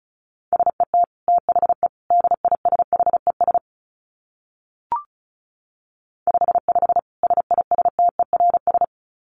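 Rapid Morse code beeps at 35 words per minute in a single steady mid-pitched tone, keyed in fast bursts of short and long elements, broken by a pause with a brief click, then resuming at the same quick pace.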